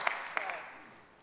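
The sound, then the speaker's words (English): A brief, quiet burst of audience hand clapping: a few sharp, scattered claps in the first half-second, then a soft wash of applause that quickly fades away. “Yeah, give me a hand clap.”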